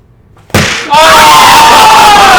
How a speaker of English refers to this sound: The little halfling just lunged across the table and slapped that.